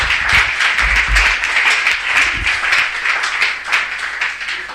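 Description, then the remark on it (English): A crowd claps hands for Jesus steadily for several seconds, a dense, loud patter of many overlapping claps with a few heavier low thumps mixed in, and no voices. “You are the seal, clap your hands for Jesus.”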